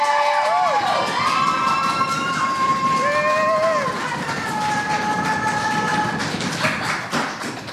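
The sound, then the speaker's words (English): A crowd at a poetry slam applauds steadily while cheering for a poet after the judges' scores are read, with high whoops and sliding whistle-like shouts rising and falling over the dense clapping, loud and continuous throughout. “Applaud the poet, not the points. And keep it going for our second poet, the final round,”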